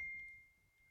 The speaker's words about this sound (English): Oh, Lord. This is what happens when you have notification everywhere.